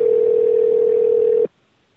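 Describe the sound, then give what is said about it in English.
A steady, unbroken telephone dial tone hums loudly for about a second and a half as someone gets ready to dial the numbers, then cuts off abruptly into near silence. No voices are heard. “You dial. I'll dial the numbers.”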